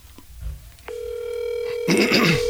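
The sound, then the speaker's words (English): A steady, clear phone dial tone of an outgoing call to a friend starts after a brief click and holds for over a second, then a brighter, busier electronic burst joins in near the end, with no voices. “I'm calling our good friend”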